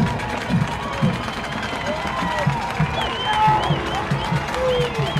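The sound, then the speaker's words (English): The Lebanon crowd at a football game against Riverdale roars steadily and loudly on third down and 14 with 8:28 to play. Rhythmic low thumps repeat about every half second beneath the noise, and occasional whistles rise and fall above it. “This Lebanon crowd back in it here now.”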